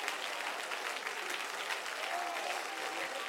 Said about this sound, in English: Come on, somebody clap your hands and lift your voice for just a minute.